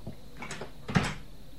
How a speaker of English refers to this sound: Off you go. Yes, Commissioner. Of course. And close the door.